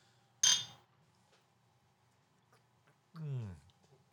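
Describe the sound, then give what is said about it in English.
A single bright, sharp clink of glasses of beer, one of them New Glarus Spotted Cow from Wisconsin, touching in a toast, followed by a quiet pause and then a short voiced sound sliding downward in pitch. “Cheers.”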